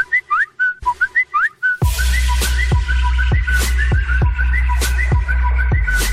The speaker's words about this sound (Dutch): Ja, ik deed even het deuntje erin. Speciaal voor de jury die ook meeluistert.